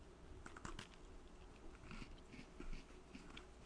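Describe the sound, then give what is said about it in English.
Someone bites into a crunchy snack and chews, producing a series of crackly crunches that come in irregular bursts with no talking. “Crunchy.”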